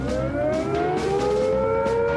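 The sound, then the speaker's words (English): A loud civil defense siren wails steadily, its harmonic tone slowly rising in pitch as it sounds on its own with no voices, a nuclear attack warning signal. “If we are attacked by nuclear weapons, these are the warning sounds you must recognize.”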